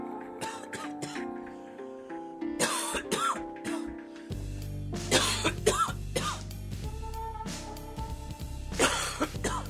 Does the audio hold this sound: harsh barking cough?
yes